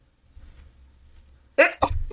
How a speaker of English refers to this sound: I'm getting ready to sneeze.